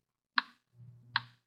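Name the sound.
clock ticking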